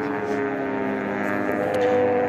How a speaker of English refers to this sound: I don't know if you could hear that motorcycle, but he was going fast.